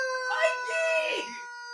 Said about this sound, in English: If you wonder what that concoction really is, that is a rubber chicken that's literally screaming like a wonky bitch. That was a damn chicken.